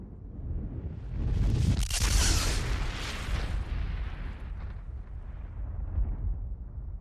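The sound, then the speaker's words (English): A loud explosion bursts out about a second in, its blast roaring through a deep, sustained rumble that slowly fades over several seconds. No voices are heard. “One Thursday night, sitting around the television watching Tough as Nails, John and Frank hear a very loud noise. The noise sounded as loud as an explosion.”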